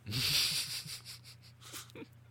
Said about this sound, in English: Is someone coughing on your end? Yeah, no. Someone's in the bathroom coughing. God, it sounds like a COVID cough.